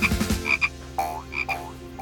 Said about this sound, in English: You almost squished a Kuranda tree frog. That's an endangered species.